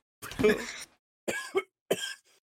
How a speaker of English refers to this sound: I just coughed. I'm sorry. I mean, if you have to count it, you have to count it. But that was a cough.